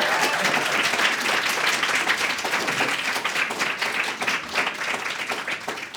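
A crowd applauds steadily, dense overlapping claps forming a loud, bright wash that holds for several seconds and tapers only slightly toward the end.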